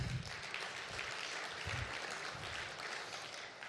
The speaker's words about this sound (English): I just wanted applause, so that's it.